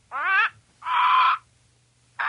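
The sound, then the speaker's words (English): A harsh, crow-like bird squawk sound effect introducing a social media comments segment rings out loud, one short call followed by a longer raspy one, then a third starting after a pause, with no talking. “This here be the social media squawks.”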